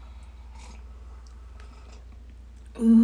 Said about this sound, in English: This is Peace Coffee Tree Hugger Blend. And this is dark roast. Yes, this is a dark roast. So let's go ahead and let's try this. So smelling it smells really good. It smells kind of sweet. It does. All right, here we go. First sip.